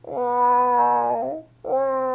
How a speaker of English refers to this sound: Now, I have two female cats. And when they are looking for a man cat, or in English we say a tomcat, they do this sound.